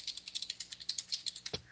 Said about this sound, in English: Sorry, I had to finish typing on a message.